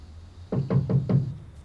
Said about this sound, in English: What was that? My door. Someone's at my door.